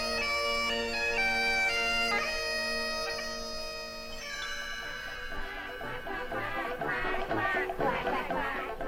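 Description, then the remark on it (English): A flock of geese in Belgium honks in a noisy, overlapping chorus, joining in a steady, sustained melody, their nasal calls growing louder and more frantic toward the end. “A flock of geese joined in the melody in Belgium”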